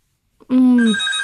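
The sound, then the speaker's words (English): A loud electronic phone ring starts abruptly after a brief pause, a steady buzzing tone that climbs to a brighter, higher pitch and continues without any talking. “Hang on, I'm getting a phone call.”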